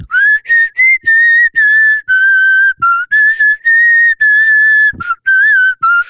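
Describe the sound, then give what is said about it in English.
A person whistles a pop melody for about six seconds, a series of clear, high, pure notes with short breaks between phrases and a few gliding pitch bends, with no talking. “I love that song.”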